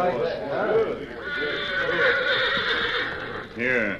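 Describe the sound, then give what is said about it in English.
A horse named Victor whinnies loudly, a long quavering neigh that rises and wavers before ending in a final shaky burst. “Here your horse, Dan.”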